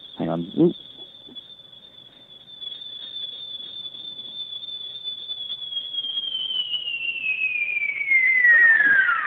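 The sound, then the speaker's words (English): A high, sustained synthesizer tone meant to imitate a Blade Runner sound, with a faint LFO wobble, holds steady for several seconds, then bends downward in pitch as it grows louder; a voice speaks briefly at the start. “Well, that was meant to be a Blade Runner sound, but there's some LFO weirdness going on.”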